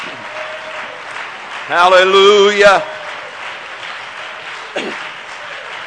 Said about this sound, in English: Let's give the Lord a hand clap of praise right now.